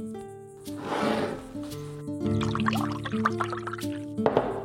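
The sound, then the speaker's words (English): Tea splashes into a cup in a steady pour, with a few trickling drips, while soft tonal music plays underneath. No one speaks. “She told me to shut up and poured more tea.”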